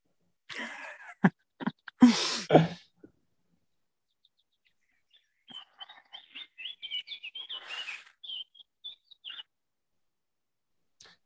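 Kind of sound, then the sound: bird, birds chirping and singing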